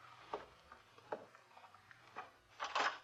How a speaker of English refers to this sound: I'll answer the door.